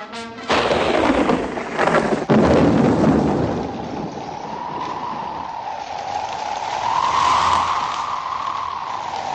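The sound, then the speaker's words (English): A stormy scene: two sharp, loud thunderclaps roll into deep rumbling, then a steady wash of rain and rushing noise continues, with a rising, howling wind tone. No one speaks. “So it begins with stormy weather and the following narration.”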